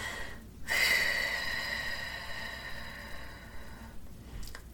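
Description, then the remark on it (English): A long, steady breath pushed out through the mouth to clear the lungs for four counts during box breathing, a soft airy hiss that starts abruptly and slowly fades over several seconds, alone with no talking. “So we're going to exhale and clear our lungs for four counts.”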